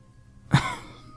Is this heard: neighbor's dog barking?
no